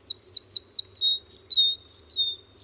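Crossbill calls: a quick run of five sharp, evenly spaced chip notes, then a flurry of higher, sweeping chirps, clear, over a faint low hum with no talking. The crossbill is a finch.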